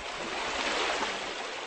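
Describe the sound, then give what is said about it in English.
A steady rush of running water from a small stream feeding into the Pate River through a railway culvert, continuous and even in level throughout, with no voices or other sounds over it. “Again, dung splattered over the grass, and the cows have obviously been right down to the very edge of this small stream, which is feeding into the Pate River back through the railway culvert.”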